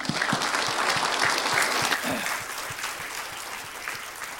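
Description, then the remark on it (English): A crowd claps steadily for a man in a dense, sustained burst of applause that holds strong, then eases slightly in loudness toward the end, with no one speaking over it. “And let's give him some applause.”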